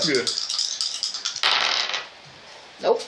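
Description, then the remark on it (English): Dice clatter in a rapid, rattling shake for over a second, then tumble in a brighter burst before settling; a short voice sound follows at the end. “The dice are not cooperating.”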